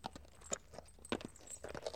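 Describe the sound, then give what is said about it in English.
A sound effect of hollow clip-clop knocks like horse hooves, fairly loud, repeating in an uneven trotting rhythm, about eight beats in two seconds, with no voices. “I don't think it's a horse, but whatever it is, it is. Yeah, it's, you know, the clippity-clop.”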